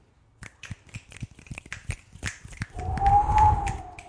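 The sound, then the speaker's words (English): A quick run of sharp, irregular snaps or claps gives way to a loud swell of rushing, howling wind with a thin whistling tone riding on top, like a spooky ghost-clapping effect. “Which doesn't sound like clapping, sounds like rushing wind, famously.”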